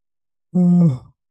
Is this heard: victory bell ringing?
no